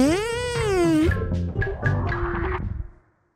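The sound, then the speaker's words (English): A loud, drawn-out fart with a buzzing, wavering pitch that breaks into several sputtering bursts before trailing off, about three seconds long with no talking. “Ready? Three, two, one. Fart.”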